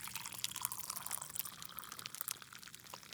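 Hot coffee pours steadily into a cup, a soft continuous trickling and splashing that lasts a few seconds, fairly quiet, with no voices.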